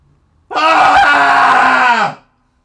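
Several voices let out one loud, sustained cathartic scream together after a three count, holding it for about a second and a half before it trails off into silence.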